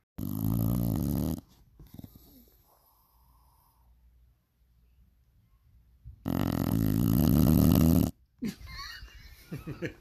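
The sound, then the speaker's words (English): A female dog snores loudly in two long, rasping breaths separated by a quiet stretch, with a faint, softer snuffle trailing off at the end. “That started with her snoring. She's been snoring the whole episode, so I let her get some shining.”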